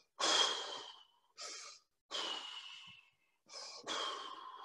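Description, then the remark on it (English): A person takes slow, deep breaths as a breathing exercise demonstration, five airy inhales and exhales separated by short pauses, with no talking. “That was probably the worst example of a breathing class”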